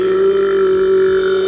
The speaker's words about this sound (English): That's a long burp. That was crazy.